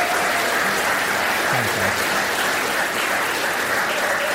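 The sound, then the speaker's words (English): A crowd claps steadily throughout, a dense, even wash of many hands applauding at a constant level with no pauses, fairly loud. “Round of applause.”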